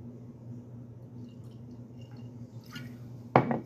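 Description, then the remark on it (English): A short splash of whiskey poured into a glass arrives near the end, preceded by faint trickling, all over a steady low hum with no one talking. “I'm going to pour a little bit more of this as we kind of kill the video feed.”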